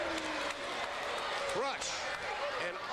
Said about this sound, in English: Crush picks up Hudson, whips him. Hudson ducks the elbow. Oh, choke slam by Crush.